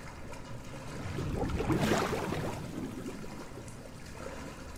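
Footsteps wade through what looks like filthy water, a sloshing swell that builds and fades in the middle of a steady watery background. No one speaks.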